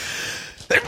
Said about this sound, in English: Bless you. You made him sneeze.